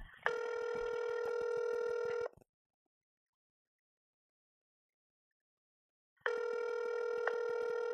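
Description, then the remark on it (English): An outgoing phone call's ringback tone plays through a phone speaker held up to the microphone, two steady electronic rings of about two seconds each separated by a long silent gap, fairly loud. “Should we call him?”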